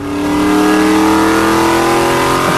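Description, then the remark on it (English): A car engine revs loudly and steadily climbs in pitch as it accelerates while the car is being driven, a sustained roar with strong harmonic whine and no voices. “Can't get into second gear. Driving the car.”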